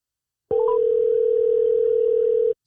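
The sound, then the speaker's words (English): A phone line's ringing tone on an outgoing call to a young woman, placed on the show A Moment with M&MJ: one steady, unbroken electronic hum lasting about two seconds, preceded by a few quick blips, clear and alone with no voices. “Phone ringing. Phone ringing.”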